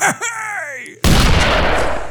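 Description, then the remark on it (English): A voice makes a falling, drawn-out tone, then abruptly bursts into a loud, harsh, sustained noisy rattle that mimics rapid gunfire heard around New Year's, as distinct from the boom of fireworks, continuing to the end. “Are you sure it was guns or was it like bottle rockets and fireworks?”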